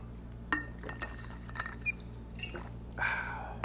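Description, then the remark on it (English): Someone takes a quick sip of water: a few faint glass clinks and small wet mouth noises, ending in a slightly louder slurp, with no talking. “So then the co-main event of the night, I'm going to take a quick sip of water.”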